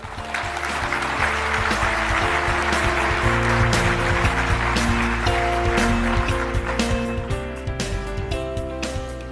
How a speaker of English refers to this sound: Let us give her a round of applause as she comes up.